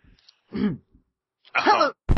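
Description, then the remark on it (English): Two rough bursts of throat clearing and coughing, a short one followed after a pause by a longer, raspier one, with another starting right at the end. “Cough. The first episode. Clear out my throat.”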